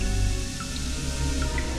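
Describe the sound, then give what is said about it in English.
Eerie orchestral strings slide with portamento over a sustained low drone, a few brief high gliding notes dripping in at intervals, steady and moderately loud with no voices, as a film scene moves into a spaceship's interior. “As we go into the spaceship's interior, the orchestra's strings drip with a portamento or slide to give us an eerie, alien vibe.”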